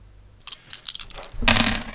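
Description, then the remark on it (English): Fudge dice from Grey Ghost Press clatter on a hard surface: a few sharp separate clicks, then a louder rattling tumble that settles over the last half second. No one speaks. “Hey, hun, roll these new fudge dice I got instead.”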